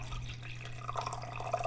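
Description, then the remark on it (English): Simmered madrona bark liquid, a dark brown water, is strained, pouring and trickling steadily with splashing and dripping over a low constant hum; no one speaks. “So the Madrona bark has been simmering now. I am going to strain it.”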